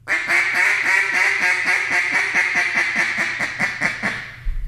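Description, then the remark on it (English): A duck call blown in a long, drawn-out boss hen sequence: about sixteen loud, raspy quacks in a steady, quick rhythm, alone, fading slightly toward the end. “What I like about a boss hen is, again, when they're coming around that corner and you feel like they're not doing anything, you're calling at them, they're not reacting, is you'll throw that boss hen out, and I'll drag that boss hen out like this.”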